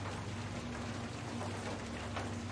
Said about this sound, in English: Hey, at least there's rain. I won't go thirsty tonight. See? Look at the bright side. At least there's rain.